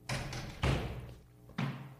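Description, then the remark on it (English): Several solid knocks on a door, roughly four hollow thuds in an uneven pattern with short pauses between, each ringing briefly, heard at an Airbnb rental in Mexico City. No one speaks. “Who's that knocking at the door?”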